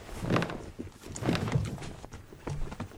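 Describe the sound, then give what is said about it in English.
Someone rummages deep in couch cushions to dig out stashed items, with irregular bursts of muffled thumps and fabric rustling in uneven clusters, no voices. “Never mind, I always keep a tub of Dramamine, a single melatonin tabule, and of course a kettle of horse tranquilizer deep in the couch cushions for just such an occasion.”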